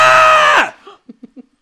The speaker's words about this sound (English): While you guys are doing that, you suddenly hear a blood-curdling scream.